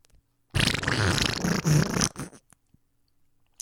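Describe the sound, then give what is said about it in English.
A single loud, sputtering fart-like noise, made by a voice imitating it and sounding like a Donald Duck fart, lasts about a second and a half with a buzzy, quacking rasp, then trails off into near silence. “Sounded like a Donald Duck fart.”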